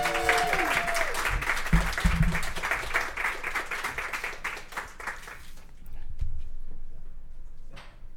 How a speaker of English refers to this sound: That was amazing. Round of applause for Trish.